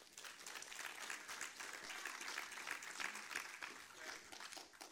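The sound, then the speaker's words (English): An audience applauding the preaching during a sermon, a dense, even wash of many hands clapping that holds at a moderate level for the whole stretch with no one speaking over it. “You can applaud if it's good preaching.”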